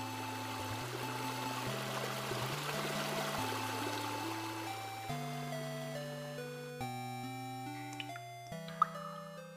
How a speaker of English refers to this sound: Do you hear water?